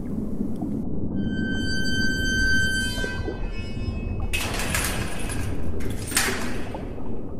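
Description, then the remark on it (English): A door creaks open with a drawn-out, groaning squeal, then a heavy sliding rush and a second whoosh, over a low rumbling background and with no voices. “I didn't give you permission to open the door and come in here.”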